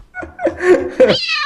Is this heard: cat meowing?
yes